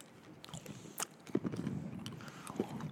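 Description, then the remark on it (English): Wet chewing of a sour hard candy, with irregular smacking and crunching mouth noises over three seconds and a few sharper clicks; no one speaks. “Are you chewing or shucking?”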